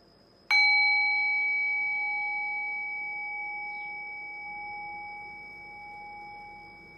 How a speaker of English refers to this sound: Now ring the sound of the meditation bell. Allow the decay of the bell to guide your awareness into silence.